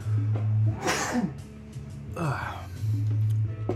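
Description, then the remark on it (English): A person sneezes once, sharp, followed by a softer breathy exhale, with a low steady hum running in the background. “I'm going to sneeze here.”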